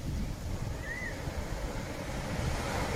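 Continuous rumbling ocean surf washes steadily along a shoreline on a sunny late August morning, a dense low roar with no distinct breaks, and a brief high chirp passes early on. No one speaks.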